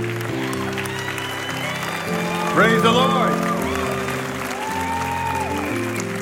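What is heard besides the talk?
audience applause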